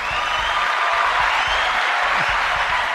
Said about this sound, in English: That's right. Give myself a round of applause. Round of applause, everybody.